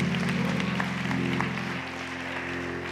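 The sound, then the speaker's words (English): A church audience gives the Lord a hand clap at the end of a service, clapping steadily in a dense, continuous patter over a sustained organ-like chord that drops away partway through, the applause lingering softly to the end. No one speaks. “Give the Lord a hand clap, and we're done.”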